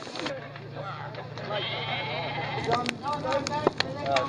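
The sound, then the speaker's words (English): A person imitates a goat, giving a wavering, nasal bleat several times in a row. The bleats are fairly loud over a low background hum, with short choppy noises between them. “you got any small kittens or goats or children you want to put in here?”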